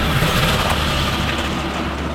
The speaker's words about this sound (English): Oh, shit, there's a Big Mac truck on our ass.